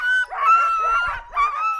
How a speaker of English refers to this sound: The dogs get so excited before their runs. They're hooked up to the guy line, leaping in the air, banging on their harness. It's like this chaotic symphony rising up to a crescendo. And then the release.